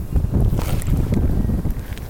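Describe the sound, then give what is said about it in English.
Water sloshes and churns inside a closed liquid trainer as it is moved from one end to the other, a steady rumble of moving liquid with a brief louder surge near the start, and no one talking. “Okay, so this is a liquid trainer. All you gotta do is learn how to move the water from one end to the next.”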